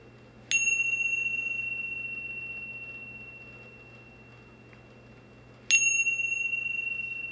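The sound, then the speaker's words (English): A bright meditation bell is struck twice, about five seconds apart, at the end of a meditation, each strike ringing out with a clear sustained tone that slowly fades. “Taking two or three more breaths and listening for the sound of the bell to open your eyes.”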